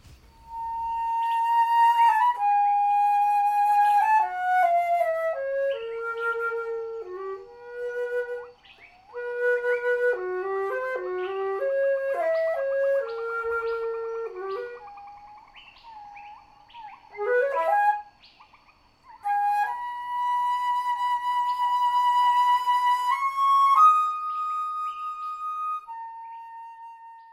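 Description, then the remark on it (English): A lone flute plays a slow, mournful melody as a solo warm-up, sustained notes drifting down and back up with gentle vibrato, clear, pausing briefly between phrases with no voices. “the slow, mournful call of Debussy's Syrinx places me in the yard in front of my childhood home”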